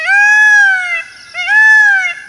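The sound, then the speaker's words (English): A peacock gives two loud, piercing wailing calls in quick succession, each a drawn-out, nasal cry that rises and then sags, with no other sounds around. “Maybe a peacock?”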